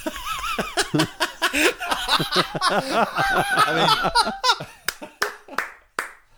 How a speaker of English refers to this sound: Applause that man. Applause.